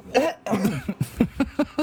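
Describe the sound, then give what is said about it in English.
A loud coughing fit: two long, rough hacking coughs followed by a quick run of five or six short, sharp coughs in a steady rhythm, with no talking. “I've heard about these Mondelez coughs.”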